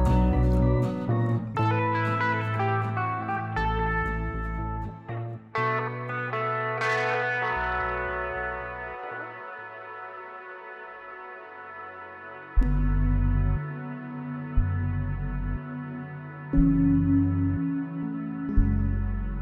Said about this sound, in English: So I drop out all the instruments in this track, aside from the guitar, and I have it reverb out to nothingness while this more serious synth part comes in.